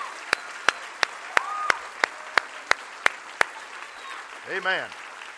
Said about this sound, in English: So I want, before I start preaching, I want you to give the good Lord a great hand clap of appreciation. Oh, come on, real big. Come on, real big.